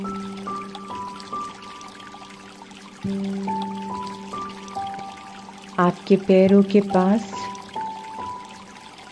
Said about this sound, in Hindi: जो नदी बह रही है उसकी आवाज सुनिए। उसमें जो पानी की कल कल की आवाज आ रही है, वे कितनी सुंदर, रिलैक्सिंग और शांत आवाज है